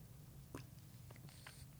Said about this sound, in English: Okay, you guys, one other thing. I just gotta, well, first of all, I have to take a little sip of tea.